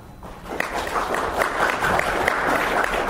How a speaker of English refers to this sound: That's how I get cheap applause. I take audio polls. So, first audio poll. Those who are here because they want to learn more about how to get podcast to listen to them, clap.